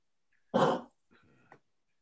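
A dog gives one loud, gruff bark, followed by a quieter, brief whine or grumble, with silence around it and no one talking.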